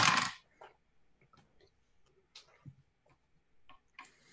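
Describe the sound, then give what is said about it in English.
Several dice rolled for damage in a tabletop game clatter across a tabletop, starting with a loud rattling burst and then scattered sharp clicks as they tumble and settle, with no one talking. “Like rolling lots of dice, consider playing a rogue.”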